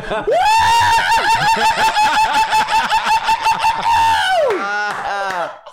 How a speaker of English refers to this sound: It's like a bird, a cockatoo.